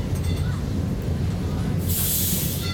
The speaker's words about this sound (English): Michael Rusenberg and Hans Ulrich Werner recorded this soundscape of the Lisbon-Portugal tram, the city's streetcar system